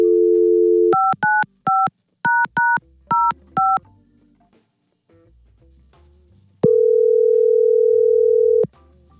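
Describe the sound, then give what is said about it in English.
A telephone call is placed: a steady dial tone gives way to about eight quick touch-tone dialing beeps, then a brief quiet pause before one long, loud ringback tone sounds. No voices. “Let's try and get him on the phone and pay for them to go out again.”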